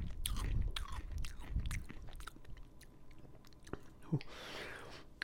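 Wet, crunchy biting and chewing sounds repeat in an uneven rhythm, with sharp clicks and smacking between bites, moderately loud and with no talking over them.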